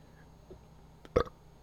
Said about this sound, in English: That shit was weak, bro. I know, I thought it was gonna be better. As far as burps go, that one was the weak sauciest of them all. No, it was polite. It was like delicate.